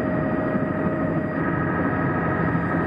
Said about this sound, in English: A lot of choppy waves around the helicopter caused by the blades of the helicopter creating small windstorms in the vicinity of the helicopter.